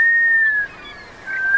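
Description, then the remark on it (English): A black scoter (Melanita americana, the whistling butterbill) gives its plaintive whistling call: two drawn-out, pure notes, the first gently sliding downward, split by a brief pause, clear, with no voices. “It's the whistling Butterbill, the black scoter, Melanita americana, today's Talkin' Birds featured feathered friend.”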